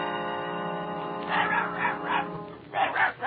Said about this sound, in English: Look, it's Dorothy's dog.